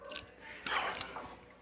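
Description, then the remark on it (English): A quiet sip from a drink during a tasting, with soft wet slurping and mouth noises lasting about a second, no talking. “Yeah, so I'm going to go sip. We'll just salud, sip.”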